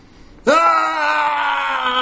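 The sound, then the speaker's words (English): A single voice lets out a loud, sustained scream, imitating a screaming crowd. It starts abruptly after a brief quiet moment and holds steady until the end. “So there's just people are screaming different things. They're just screaming.”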